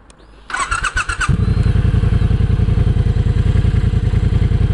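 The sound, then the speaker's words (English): A Triumph bobber motorcycle engine cranks with a brief rapid clatter, then catches and settles into a loud, steady, throbbing idle, its low pulses repeating evenly. “But first, let's go on a motorbike ride. Okay, let's try out this Triumph bobber.”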